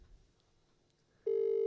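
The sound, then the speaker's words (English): A phone line's ringback tone: after a second of near silence, one loud, steady electronic purr begins and is cut off shortly after. No voices. “I wonder if she'll answer the phone.”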